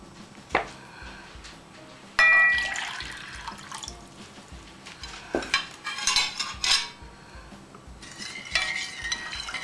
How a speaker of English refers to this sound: And then white vinegar, 1 cup of white vinegar. And all this has to be brought to boil. I'll show you. I give it a stir and bring it to boiling point and give it a chance to cool off while we do the rest of the preparation.